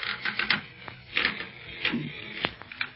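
A bed creaks repeatedly as someone shifts on it, an irregular run of dry squeaks and sharp clicking ticks at moderate loudness, with no voices.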